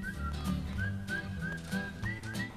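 A bright, cheerful whistled melody of short rising notes, played at a steady bouncy rhythm over a soft instrumental backing.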